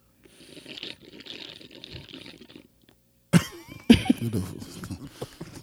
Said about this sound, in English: Sorry. That was loud fucking sipping.